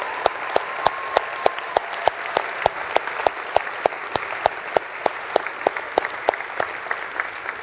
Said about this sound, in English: But, you know, the reason we applaud is because there's something in us that knows that's right, that's good, I want that.